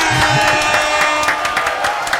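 A small group claps steadily for a couple of seconds to welcome a special guest, a dense patter of sharp, bright hand claps with a few louder individual slaps standing out over a constant hiss.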